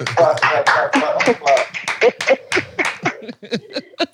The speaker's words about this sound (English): Yeah. Clap.